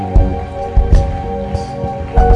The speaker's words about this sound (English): Keep clapping. There are a lot of people that are coming.